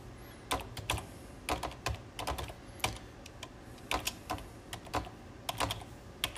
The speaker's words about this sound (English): That's my keyboard doing all that pounding noise.